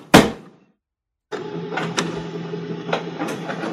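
An office printer: a sharp thump, a second of silence, then a steady mechanical whirring with rhythmic clicks and clatters as it starts feeding and printing.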